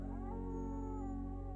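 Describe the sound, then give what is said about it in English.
A person imitates a wolf, letting out one sustained howl that holds a steady tone and bends slightly in pitch, fairly loud, with no talking around it. “and with the howl,”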